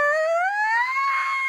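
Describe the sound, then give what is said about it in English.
A single loud, high-pitched wheeze, sustained for over a second as a thin whistling tone that slowly rises in pitch, with no talking over it. “You hear that wheeze?”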